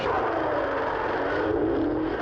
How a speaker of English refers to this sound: The sound of a plane going over. That doesn't quite work.